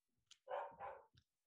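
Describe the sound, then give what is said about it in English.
A medium-sized dog barks twice in quick succession, two full, fairly loud woofs with small clicks and snuffles around them, with no talking. “Oh, your little dog.”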